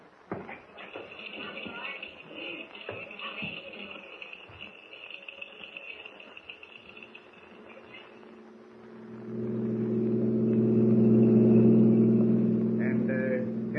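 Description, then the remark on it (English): Shuffling and rustling movement at first, then a car engine roars to life, revving loudly and holding a steady growl as the vehicle pulls away. “It'll take us an hour to get there. I'm ready. We'll take my car.”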